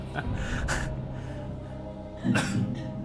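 A few short, harsh coughs in separate bursts, the last one heavier, from someone on the sidelines of a quiz as a contestant hovers around the answer cricket, with no talking.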